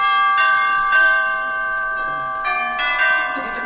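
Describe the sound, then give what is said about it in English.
A doorbell chime rings out clearly on its own, a series of bright, sustained bell tones struck several times in succession, each note ringing on and overlapping the next. “Gee, I always have trouble getting up enough courage to ring the doorbell.”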